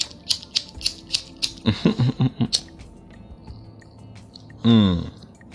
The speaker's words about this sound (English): So please, everybody with me, please spark your blunts. Let me hear your lighters. Lighters.